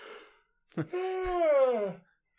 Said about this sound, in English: Oh, man. Sorry for the yawns, everybody.